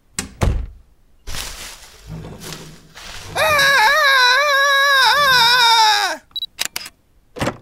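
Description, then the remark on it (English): A person lets out a loud, sustained scream lasting about three seconds, its high pitch wavering and dipping at the end, preceded by thumps and rustling and followed by a few sharp clicks. “I bet you might have thought it was because of my crippling fear of being alone that I was screaming, but no!”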